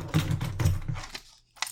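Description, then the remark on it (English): Keys scrape and rattle against a tabletop, a bright metallic clatter lasting about a second, then a brief pause and a short final scrape. “Yeah, I just scraped my keys on the table.”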